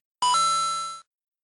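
bell ringing

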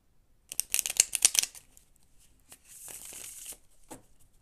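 tarot cards being shuffled

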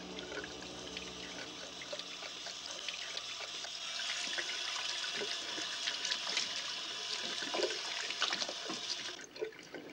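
water running

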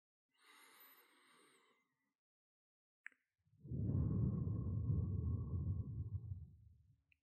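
slow deep breaths

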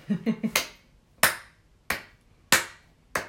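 finger snapping as applause

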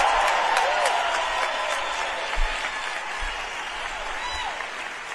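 crowd cheering

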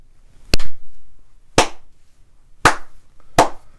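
hand clapping

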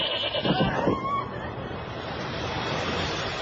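goat bleating

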